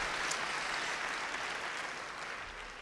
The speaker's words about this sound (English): This is the day that the Lord has made, and therefore we rejoice. Come on, give Jesus a hand clap of praise, ladies and gentlemen.